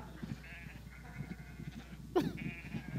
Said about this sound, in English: Obviously, the wind is blowing. It's not me. That's the wind. It's not me.